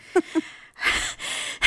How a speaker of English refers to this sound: A lot of heavy breathing on this episode.